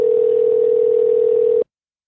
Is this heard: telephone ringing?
yes